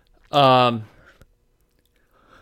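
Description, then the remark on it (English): A single loud, sharp sneeze bursts out, briefly voiced and lasting about half a second, then near silence with a faint click and soft breathy sounds. “Bless you.”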